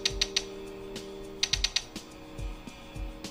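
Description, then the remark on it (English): Crisp mechanical clicks from a small handheld custom soundboard gadget with mechanical key switches being twisted widdershins, coming in quick bursts of three or four ratcheting clicks with short pauses between, over a steady low hum. “Twisting its widdershins won't actually make it change shape, but it does make a distinctive clicking sound.”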